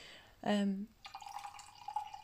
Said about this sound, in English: Let me just pour my brew. Sounds good, doesn't it? It's my favourite sound of the world, that. Pouring from a teapot into my favourite cup. It is my favourite sound other than my kids' laughter.